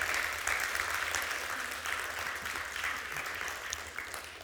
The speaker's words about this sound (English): Come on, would you give him a great round of applause today?